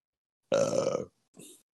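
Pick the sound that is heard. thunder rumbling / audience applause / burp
burp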